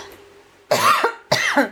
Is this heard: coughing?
yes